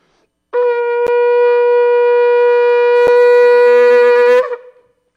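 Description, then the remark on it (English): A shofar, a real ram's horn, sounds one long, steady blast lasting about four seconds, a bright brassy tone rich in overtones that stays level before cutting off with a brief rough flutter. No talking. “This is a real shofar. It's a ram's horn.”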